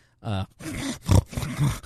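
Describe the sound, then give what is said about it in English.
A voice imitates a pug's wheezy, snorting breathing as it just stands: a harmonic groan followed by several rough, raspy snorts and grunts, fairly loud. “That's them breathing as they just stand.”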